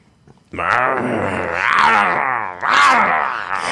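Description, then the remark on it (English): A person imitates territorial animals growling: a drawn-out, rough growling roar, loud, wavering in pitch for a few seconds with a brief break before surging again. “And they both look at you, and suddenly their fur stands on end, and they become very territorial, and they growl at you viciously and start stepping towards you.”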